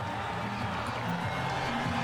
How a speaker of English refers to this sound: This is Ronaldo walking in. You can hear the crowd.